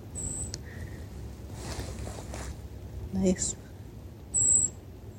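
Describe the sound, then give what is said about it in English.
A small bird gives a few thin, high-pitched calls, short chirps spaced a few seconds apart, fairly close, over a steady low outdoor rumble. “Oh, a little bird coming in.”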